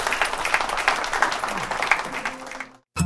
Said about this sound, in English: So let's have a round of applause.